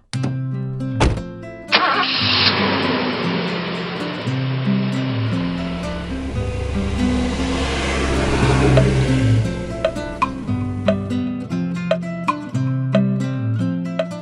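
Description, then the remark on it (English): A bus engine cranks to life after a couple of seconds and settles into a loud, steady rumble that gradually fades, with background music playing throughout and no one speaking. “Let's get on the bus.”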